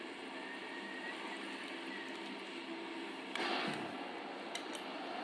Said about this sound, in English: We're gonna see where this plane's flying.